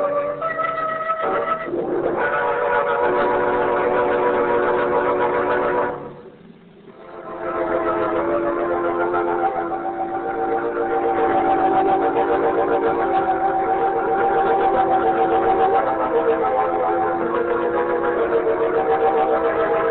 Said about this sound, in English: A man in the road, waving a lantern. Of course, Margot. It's a train crossing.